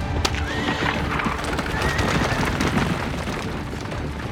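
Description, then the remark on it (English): Horses pulling Rama's chariot whinny over a steady rush of galloping hooves as they are whipped and charge toward the demon Ravana, with low rumbling booms underneath, creating a loud, dense battle-like scene throughout. “While Ravana was distracted, Rama jumped into the chariot, whipped the horses, and took off toward the demon.”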